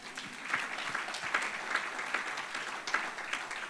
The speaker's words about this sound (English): So, no visitors? There are some visitors over here. Well, this round of applause is especially for you.